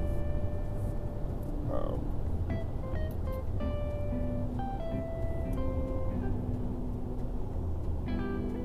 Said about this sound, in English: Really windy out right now.